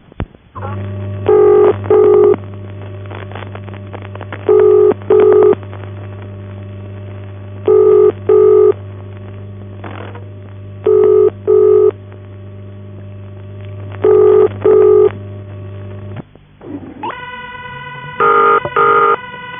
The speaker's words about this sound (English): In the first case, Waterloo 928 exchange, the ring is feeding back into the machine